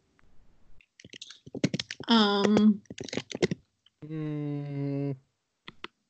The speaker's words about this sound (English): Are you typing a paper?